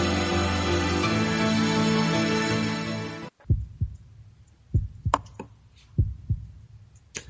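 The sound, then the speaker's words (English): A burst of music cuts off abruptly, leaving a deep, muffled heartbeat thudding in slow paired beats, lub-dub, several times in near silence. “As the heartbeats fade away, it's time to come back to part two of Ghost Chronicles International.”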